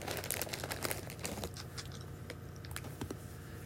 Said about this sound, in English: If you're eating something or something, the crippling crunchy sound is real good.